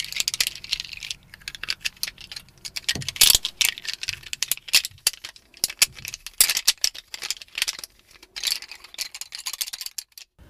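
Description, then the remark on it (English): Pencils roll and clatter across a hard surface in a rapid, irregular stream of light wooden clicks and rattles, bright and crisp, with brief pauses between bursts and no voices. “I hope the sounds of me rolling these pencils go some way to appeasing your violent temper.”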